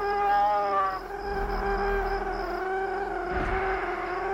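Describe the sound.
A voice mimics an eerie electronic feedback whine like the one at the start of the film Signs: a sustained, wavering, humming tone that shifts in pitch over about four seconds, with a brief swoop partway through.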